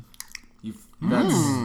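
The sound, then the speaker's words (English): A few crisp crunching bites of hot food, fried in peanut oil and dipped in remoulade, are chewed, followed by a loud, drawn-out appreciative hum from the eater. “A little bit crunchy on the outside. Juicy on the inside.”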